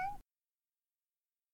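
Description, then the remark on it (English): A single quick, loud meow from a person pretending to be a cat, in a promo for Judge John Hodgman, with a brief rising-then-falling pitch, followed by silence. “Judge John Hodgman, the court of last resort when your wife won't stop pretending to be a cat and knocking the clean laundry over.”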